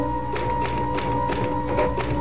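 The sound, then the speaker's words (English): Typewriter keys being typed on a sheet of paper loaded into the typewriter: around seven sharp, clicky strikes at an uneven pecking pace, heard over a steady low electrical hum, with no voices. “I found myself putting in a piece of paper, and I began pecking at the keys. Somehow, the typewriter took over.”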